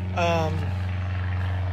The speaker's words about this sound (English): I swear that the helicopters and planes wait till we're recording.